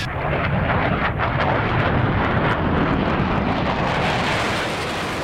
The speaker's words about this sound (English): As you just heard, the jet sound touching down.